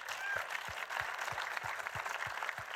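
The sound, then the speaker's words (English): An audience applauds steadily as co-screenwriter Allison Schroeder is introduced at a Hidden Figures cast and crew event, many hands clapping in a dense, continuous wash of sound that holds an even loudness throughout, with a faint underlying thump repeating at a regular beat. “Allison gets extra applause because 4 weeks ago, she gave birth to her first child, during which process, go sit here.”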